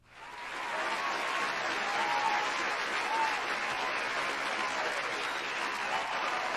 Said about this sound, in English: And in all actuality, let me give this brother a round of applause.